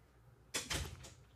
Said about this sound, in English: Can you shut the door? Yeah. Thank you. All the way?